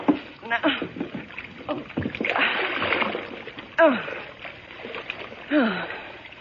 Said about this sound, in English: Thanks for falling into the water, Henry. The tub is low, but you can drown in it just as quickly as in High River.